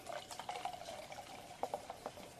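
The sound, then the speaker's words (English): Beer brewed with coriander, sweet orange peel and unmalted wheat being poured gently into a glass: a steady, bubbling gurgle with quick splashy spurts and a faint rising fill tone, moderately loud, with no one talking. “Ah, you hear that going into the glass?”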